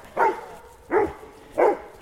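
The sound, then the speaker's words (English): Three evenly spaced barks from a dog, one of six dogs running toward the speaker, each a short, fairly loud woof with a harmonic, slightly whiny tone, separated by brief quiet gaps with faint background noise. “Oh, there's another dog. Two dogs, three dogs, four dogs, five dogs, six dogs.”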